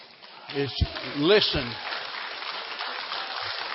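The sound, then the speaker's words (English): An audience claps in a steady, dense wash of applause that runs through the whole clip, with a voice calling out over it near the start. “You're clapping, and what you don't realize is that it is in no way due to me whatsoever at all, because I would have failed and fallen by the wayside long ago.”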